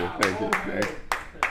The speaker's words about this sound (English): I select. Are you guys ready? Jonathan Taylor. Applause, applause.